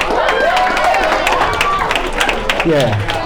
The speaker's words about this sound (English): Some of y'all clapping, but there are going to be some people who won't be clapping